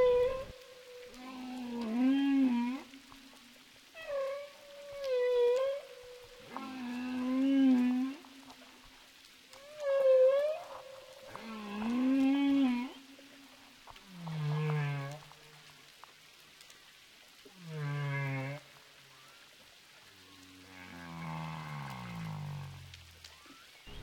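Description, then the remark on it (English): Humpback whale song underwater, heard while diving among three humpback whales in crystal clear water: a series of long, wavering moans and high wails repeated in phrases with short pauses, ending in deep descending groans. Clear, with no talking. “And what could be a more awesome sight than being surrounded by three humpback whales in crystal clear water?”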